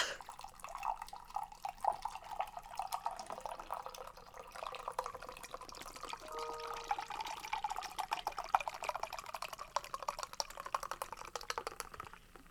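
Pepsi from a chilled can, turned upside down, pours hard into a glass, a steady rushing stream under a dense, crackling fizz of bubbles that lasts throughout, moderately loud with no talking.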